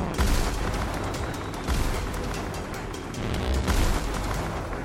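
A dense barrage of Orion cannon fire aimed at attacking airships, heavy booms rolling into one another with several louder surges, continuous with no pause for the full length.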